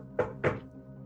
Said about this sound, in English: And I'm going to knock on the door.